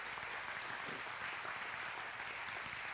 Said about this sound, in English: If you're thankful for these promises, come on, church, give God another hand clap of praise this morning. Amen.